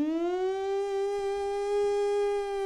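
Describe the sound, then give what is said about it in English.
Someone imitates an air raid siren with their voice, holding a loud, steady wail that rises slightly at the start and then sustains for the whole few seconds. “And I hear this air raid siren.”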